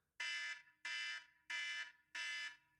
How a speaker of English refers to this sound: The klaxon, which just reminds me of GoldenEye, this alarm. Playing GoldenEye in the N64, that's what it reminds me of.